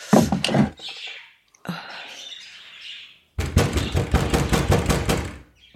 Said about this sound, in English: Oh my God. It's the cellar door.